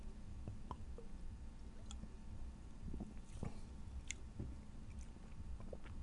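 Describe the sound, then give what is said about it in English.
Quiet sips of pear-flavored soda with soft wet mouth clicks and swallows scattered over a few seconds, no talking, against a low steady hum. “So let's take a sip here now, shall we?”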